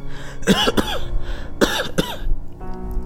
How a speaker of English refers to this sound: starts coughing.